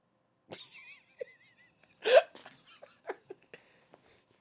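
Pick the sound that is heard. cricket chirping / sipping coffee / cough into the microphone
cricket chirping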